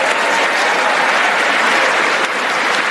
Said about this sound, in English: This is a derogatory clap, make no mistake. Well, obviously, it's a derogatory clap. We know that.